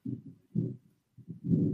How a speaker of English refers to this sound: Now I know you heard that thunder.